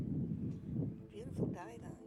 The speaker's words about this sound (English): It was a pretty sunny day, really, really windy. Oh, sorry, the wind is just insane. Might just wait till this gust pass. Not ideal conditions, is it?